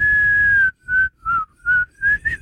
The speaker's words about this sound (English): you're going to hear it two times backward. Whistle while you work.